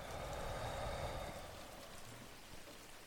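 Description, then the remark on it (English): Steady rain falls in a continuous, even hiss, with dense patter and a soft low rumble underneath, easing slightly in loudness toward the end. No voices are heard. “Rain Meditation”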